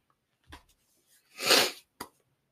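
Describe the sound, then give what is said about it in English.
Sniffling: a short nasal sniff, then a longer, louder wet snuffle, and a quick final sniff, with no talking around them. “Sniffles.”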